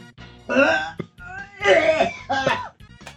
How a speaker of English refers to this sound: I just think I'm going to burp.